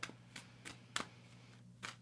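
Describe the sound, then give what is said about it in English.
Playing cards being shuffled and picked out of a deck, with about five crisp, papery flicks at irregular intervals. The sounds are soft, with no talking. “I'm going to pick out my dirtier cards. Hold on. Because the cards I was just shuffling weren't dirty enough.”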